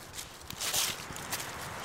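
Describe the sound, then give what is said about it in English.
Footsteps crunch through woodland in a ravine at a steady walking pace, several soft steps in a row with a rustly, brushy texture and no voices. “All right, I'm going to follow your footsteps.”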